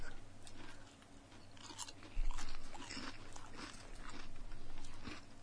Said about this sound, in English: I can already hear, why are you guys chewing to the microphone?